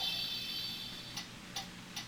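The timer of a band board game ticks down its 15-second countdown with three sharp, evenly spaced clicks, each under half a second apart, over a steady high-pitched electronic whine. No one speaks.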